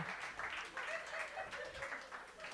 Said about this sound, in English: Let's get a medium clap. A medium clap. Okay. Let's get that medium clap again mixed in with a little bit of laughter. It's going to feel weird, but once you start, it's going to feel okay.